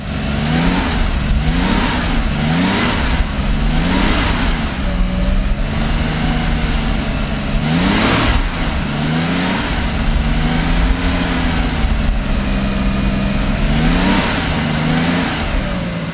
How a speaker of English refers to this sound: It's another air-cooled car.